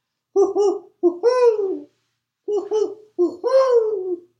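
An owl hoots two matching phrases, each a quick run of short, clipped hoots ending in a longer, drawn-out hoot that slides down in pitch. Clear and fairly loud, with no talking.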